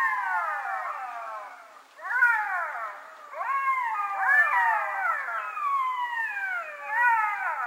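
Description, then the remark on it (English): A pack of about 8-9 jackals in a meadow howls together in a high-pitched chorus while trying to chase an animal off its kill, many overlapping wailing, sliding yips rising and falling continuously and fairly loud, with no one speaking. “All the jackal howling at the same time. Oh. This incredible high-pitched howling noise.”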